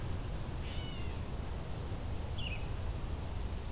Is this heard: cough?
no